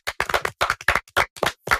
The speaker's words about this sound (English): A round of applause for yourselves.